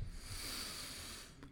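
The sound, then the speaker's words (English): A long, breathy yawn, a steady airy exhale lasting over a second with a soft rushing hiss, fading out with a brief catch at the end. No talking. “I'm kind of yawning right now.”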